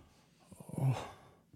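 A man's heavy, labored breath swells up into a loud, raspy exhale and then trails off, quiet otherwise, with no talking.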